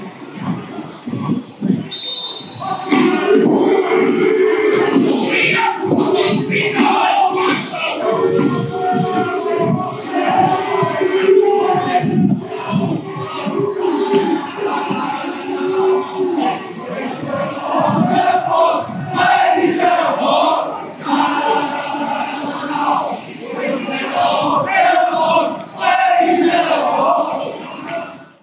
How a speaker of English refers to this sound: The chant you heard there was Lizzie's in a box, in a box, Lizzie's in a box